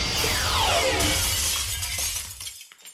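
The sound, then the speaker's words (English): A loud crash of an orangery's glass shattering, followed by a long bright tinkling cascade of falling shards that thins out and stops after a couple of seconds. “Oh no, the greenhouse!”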